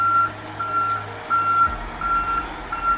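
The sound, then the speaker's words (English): A dump truck's reversing alarm beeps steadily, five or six long evenly spaced tones over a low diesel engine rumble that shifts partway through; clear, with no talking. “so the studio backs up that dump truck full of money for him.”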